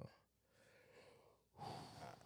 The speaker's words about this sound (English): Excuse me. Yawning and shit.